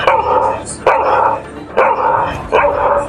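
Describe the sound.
A person imitates dogs barking, giving four loud, close woofs at a steady pace with short pauses between them and no other talk.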